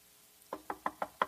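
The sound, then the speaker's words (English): Five quick knocks on a door in a steady, even rhythm, fairly crisp, each rap a little louder than the one before, after a brief quiet moment. “After Jesus has been in there for a while, he's going to knock again.”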